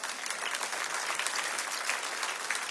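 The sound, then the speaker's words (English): A crowd applauds steadily, many hands clapping in a dense, even wash of sound that holds at a constant moderate loudness throughout, with no voices standing out. “You can clap for that.”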